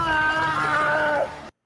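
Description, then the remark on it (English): The Wilhelm scream sound effect: a single loud, strained, high-pitched male cry lasting about a second and a half, holding steady and then dipping slightly in pitch before cutting off abruptly. “It's the Wilhelm scream.”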